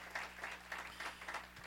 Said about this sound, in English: Give Jesus a good hand clap of praise and glory, someone. Amen.